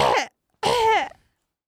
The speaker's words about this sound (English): You know what I did like? Yeah. Artie's coughing noise that he does.